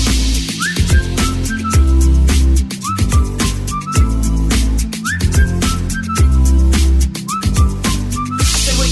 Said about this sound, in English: Can you blow that whistle, you say whistle, we say bum, bum, bum.